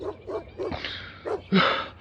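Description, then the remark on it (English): A dog in the woods barks repeatedly in short, uneven bursts, a few quick yips followed by louder, longer barks, with no voices present. “Is that a dog barking?”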